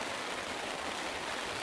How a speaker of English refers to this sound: We can go on, it's all right. Bit of rain noise is all right.